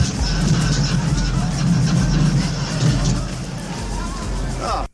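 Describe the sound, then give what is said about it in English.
A rough, beat-up old car engine rumbles steadily at a parade while a crowd murmurs and chatters all around, the noisy mix holding constant before cutting off abruptly. “driving his pile of shit car before they fix it all up with stolen parts”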